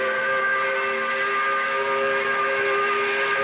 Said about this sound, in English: This limbo period in between the work week ending and the weekend beginning. We recognize it by blowing the 5 o'clock whistle. I said we recognize it by blowing the 5 o'clock whistle?